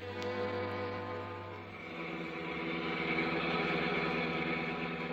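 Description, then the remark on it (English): The engine of a car driving home from a late party runs steadily, a low humming drone with a layered harmonic buzz that shifts slightly in pitch partway through and keeps going without pause. No one speaks. “She's in a car now, on her way home from a late party.”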